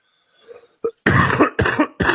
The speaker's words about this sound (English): I did a little bit of vape on a drive, and I've had a chest cough ever since. A little bit of congestion in here.